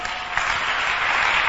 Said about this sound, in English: Clap for Jesus.